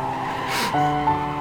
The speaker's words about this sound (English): That car that's peeling off and driving away really fast.